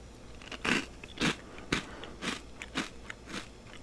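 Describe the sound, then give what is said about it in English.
Crunching on a handful of three spicy chicken flavor corn puffs: about six sharp, crackly bites in an uneven rhythm, each a bright burst of crisp snapping, with no talking over them. “Okay, so I got three of them in my hand. I'm gonna eat them, and I guess we'll see.”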